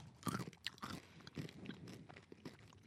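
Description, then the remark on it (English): Loud crunching of larger-than-average M&M's candy-coated chocolates with purple speckling being chewed, with sharp irregular crackles and bites over a few seconds and no talking. “They are bigger than your average size M&M.”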